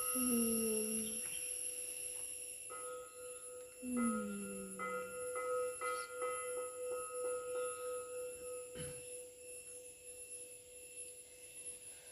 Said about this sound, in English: Let's just have a moment for the bells.